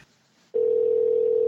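After a brief moment of near silence, a loud, steady telephone tone switches on and holds at one pitch without a break until the end, as a phone call is being placed.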